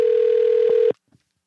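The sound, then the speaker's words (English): A telephone ringback tone on an outgoing call: a steady, moderately loud electronic tone over line hiss that cuts off abruptly after about a second, followed by a faint click. “Now, I hear the ringing, so we know it's working.”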